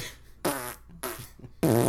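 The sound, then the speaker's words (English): A voice imitates wet farts with three sputtering, raspberry-like blasts, evenly spaced, the final one the loudest and longest. “And you hear like audio of like wet farts.”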